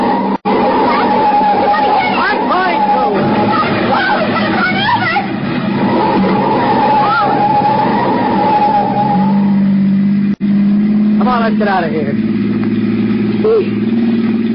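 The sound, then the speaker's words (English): A car engine roars and revs steadily for several seconds, loud, with a noisy jumble of voices and rattling underneath, then the engine tone drops lower near the end. “I'm going to pull him one side, slam on the brakes, and see what happens.”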